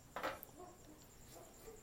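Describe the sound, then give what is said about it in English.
A faint cricket chirps steadily in a thin, high-pitched drone that runs the whole time, on a cool Saturday, with a brief soft clatter near the start and no voices. “And that cricket and that comes out of the house. It sounds like it.”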